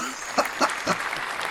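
A short burst of recorded studio-audience applause, a round of applause made of a steady crackle of many hands clapping at once with a few sharper claps standing out, moderately loud and with no voices over it.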